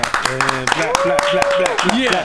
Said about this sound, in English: Let's give a warm round of applause for Rob Markman in the house.